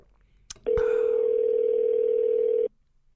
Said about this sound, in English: Well, I guess I'll try him again real quick, although we are about to wrap up. Read audio right there. Phone ringing.